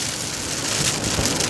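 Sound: rain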